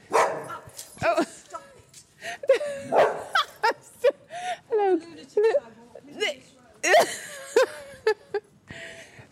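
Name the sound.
dog barking and whimpering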